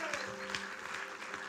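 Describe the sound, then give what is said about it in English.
An audience claps steadily for the leaders and people of the Fire Family, a dense, even patter of many hands at a moderate level, with a faint low hum beneath. “So let's give a round of applause to all the leaders and people and our Fire Family that have really stepped up this year.”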